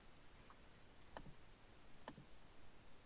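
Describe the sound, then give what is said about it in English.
Faint ticking: a couple of soft, sharp clicks spaced about a second apart, with a barely audible tick before them, against a quiet, hissy background. “I found the source of the mysterious ticking noise.”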